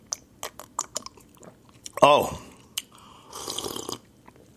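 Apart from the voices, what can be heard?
sipping hot tea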